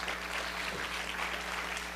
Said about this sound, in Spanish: Puede aplaudir fuerte para Dios si usted quiere.